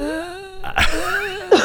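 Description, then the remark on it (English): A strained groan gives way to two rough, raspy coughing bursts with a throat-clearing quality, sounding like a person exaggeratedly imitating a cough. “If Harvey coughs like that, he's going down.”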